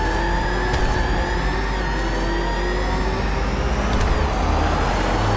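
The Joker's armored car pulls away and Batman's Batmobile speeds off in pursuit: a heavy engine roars steadily and picks up speed, a loud, continuous rumble with rising whine and a couple of brief sharp clunks, no voices.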